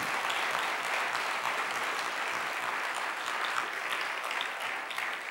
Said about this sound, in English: So a huge round of applause.